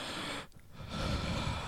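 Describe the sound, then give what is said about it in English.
A voice imitates heavy, stifled breathing, as of someone trying to hide it: a long noisy exhale, a brief held pause, then another rough, breathy rush of air, with no words spoken. “And it's like, people like that, they breathe heavy, but they also breathe like they're trying to actively hide it, too.”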